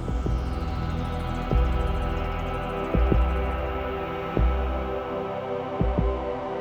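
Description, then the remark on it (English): Theme music: sustained, droning chords from old synthesizers recorded to tape hold steady while deep, soft, dry thumps pulse underneath in paired beats like a slow heartbeat, spaced about every second and a half. No voices. “It's more like it still has a beat, but it's more like a heartbeat, which brings you into it even more.”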